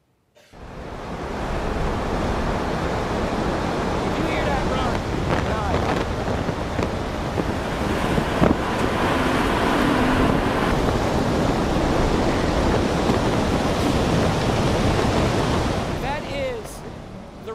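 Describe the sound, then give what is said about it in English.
A recording of a tornado's roar, likened to the sound of a train, played back: a dense, continuous rushing rumble like heavy wind, holding steady and loud for about sixteen seconds, swelling slightly partway through before cutting off. “If you hear the sound of, like, a train or something? Hey, go ahead and play this for us.”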